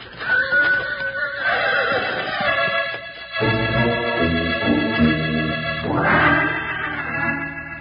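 A horse neighs and whinnies loudly, several drawn-out, quavering calls over about eight seconds with no talking.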